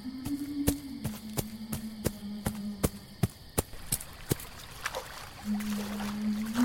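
Quick, evenly spaced footsteps of a person running splash through a shallow stream in the dark, icy water up to the ankles and feet sinking in mud; about a dozen sharp strides over a low steady hum, trailing off into softer trickling and sloshing.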